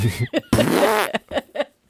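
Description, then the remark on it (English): A voice imitates a wet fart: a couple of short sputtering pops, then one long, loud, rippling blubbery raspberry, followed by a few more quick wet bursts. “You need a wet fart?”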